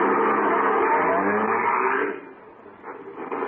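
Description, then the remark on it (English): A car engine starts and roars loudly, revving steadily for about two seconds, then drops off to a quieter, uneven idle with a few faint sputters. No voices. “The car might be hard to start again some morning.”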